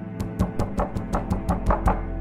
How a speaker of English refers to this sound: Amanda started knocking louder, hoping to wake Meredith up in case she was still asleep.